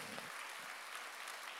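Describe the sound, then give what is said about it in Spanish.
A church audience applauds to praise the Lord for his mercy during a sermon, a dense steady wash of many hands clapping at once, sustained and even for the whole moment with no voices standing out. “¿Cuántos alaban al Señor por su misericordia? Dele un aplauso.”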